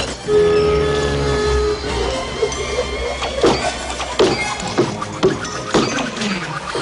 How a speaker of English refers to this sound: For example, in Beauty and the Beast, Belle's dad was this inventor and he had built that funny axe chopping machine. That was a sound that we made before animation. Let's give it a try.